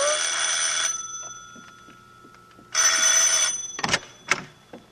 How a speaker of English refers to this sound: The whole room was spinning like a whirlpool, ever narrowing, until finally it was as thin as the sound of a bell.